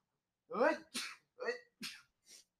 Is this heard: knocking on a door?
no